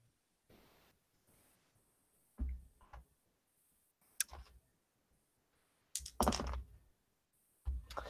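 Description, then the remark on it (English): Dice are scooped up and rattled in several short, clattering bursts, with quiet gaps between them. The clicks sound fairly loud, and no one speaks. “Sorry, I didn't have enough dice.”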